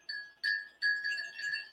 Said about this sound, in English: And the last item I have is this awesome wind chime. And it is shaped like an angel.